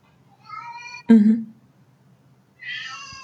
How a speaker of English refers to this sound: Sorry, my cat is crying, so I'm going to check on him